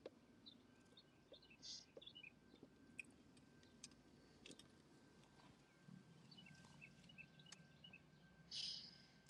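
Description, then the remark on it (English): Faint birds chirp outdoors in spring in the suburbs, in scattered short bursts, with a slightly louder call near the end, over a low steady background hum and no talking. “Sounds of spring in the suburbs.”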